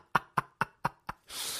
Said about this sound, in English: Now we can party, and I haven't sneezed yet. Knock on wood.